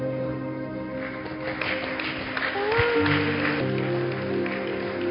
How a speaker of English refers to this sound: Oh, keep clapping. Keep clapping. Your clapping is not encouraging. Oh, that another one is coming from the back. Put your hand together for him too.